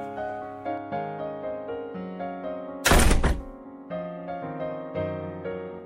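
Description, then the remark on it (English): A single loud, heavy door slam lands midway as a woman slams the door and runs off, a brief booming crash that cuts through soft, sustained music playing steadily before and after it. “She just slammed the door and ran through the streets.”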